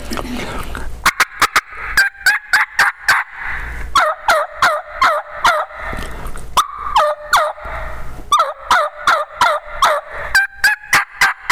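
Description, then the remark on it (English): Loud turkey yelps from a hand turkey call: a rhythmic run of imitated hen yelps, then answering runs of lower, coarser, deep and honky jake yelps, sounding like two different birds, repeated in steady bursts with no talking. “I'll actually hen yelp the sexy hen he's been hearing, and then I'll answer it with those Jake yelps”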